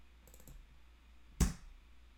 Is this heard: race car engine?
no